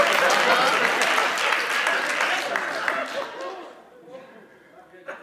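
An audience claps in a dense, steady burst of applause that gradually thins out and fades over about four seconds, leaving a few scattered claps and faint murmuring at the end.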